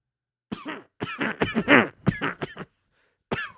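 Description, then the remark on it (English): A close run of throaty, voiced coughs comes in quick clustered bursts with brief pauses, ending with one more cough after a short silence; the coughing may be muffled. “There was a small voice and muffled coughing.”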